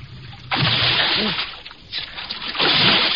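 A heavy splash as a person vaults over a rail and plunges into an icy river, followed by loud churning and sloshing, then a second burst of rough splashing. The water sounds fill the whole clip.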